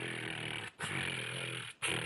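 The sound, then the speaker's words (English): A woman's voice imitates a cat with rough, buzzy trilling sounds, three sustained bursts separated by two short pauses, steady and fairly loud throughout. “This is her actually doing the cat noises.”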